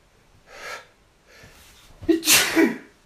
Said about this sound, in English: I'm going to sneeze.